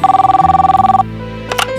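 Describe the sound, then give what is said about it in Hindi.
A telephone bell rings in a rapid, trilling burst for about a second, loud, then stops, followed by a brief clatter as if the handset is picked up. “Phone की घंटी से आंख खुली।”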